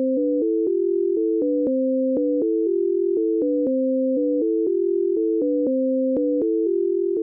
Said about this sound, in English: So, in point of fact, the right ear receives a jagged sequence consisting of high tones alternating with lower tones, and the left ear receives another jagged sequence, but people don't hear it that way.